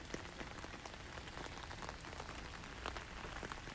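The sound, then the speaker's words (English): Steady rain patters on a hard surface, a dense, even hiss with scattered sharper drips and taps, continuous throughout, with no voices. “So I'm waiting in the rain.”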